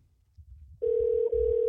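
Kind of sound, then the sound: signal or alarm, outgoing phone call ringing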